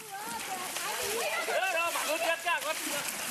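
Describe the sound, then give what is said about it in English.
River water splashes and sloshes steadily in a busy, continuous wash of sound as prized cows covered in colourful, fragrant spices are ritually washed in the river during a community celebration, while a crowd of voices shouts and chatters over it. “They are brought to rivers covered in colourful and fragrant spices, which are then washed off.”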